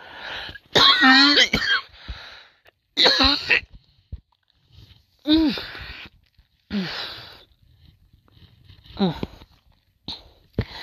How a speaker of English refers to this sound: Sorry, you guys, for my coughing, but, I'm a little bit wheezy.